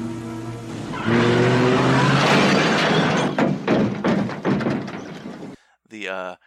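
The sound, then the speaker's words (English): A car engine idles with a low hum, then bursts into a loud, sustained roar of drag racing cars in a film, punctuated by sharp thuds and crashes before cutting off; a voice briefly speaks at the end. “I guess the whole drag racing and car element of this film.”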